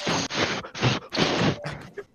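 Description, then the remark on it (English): Chords slammed on an unplugged electric guitar: five or six harsh, thin, buzzy strums in a quick uneven rhythm, each a bright percussive scrape of strings with little ringing tone. “Me slamming chords out on my guitar, it but just, not actually trying to. It sounds like the guitar isn't on.”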